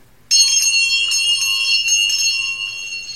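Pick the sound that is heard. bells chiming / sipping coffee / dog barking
bells chiming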